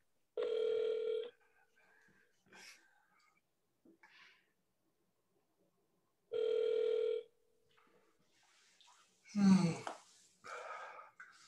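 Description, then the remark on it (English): A phone line rings twice, each long buzzing ringback tone lasting under a second and spaced several seconds apart, followed near the end by a few short, sharp vocal sounds. “pick up the phone, bro.”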